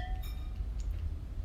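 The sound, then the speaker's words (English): Wine glasses clink together once in a toast over a second bottle of cabernet wine, a bright ringing tone that fades quickly over a low, steady background rumble. No one speaks. “Cheers. Cheers. Bottle two.”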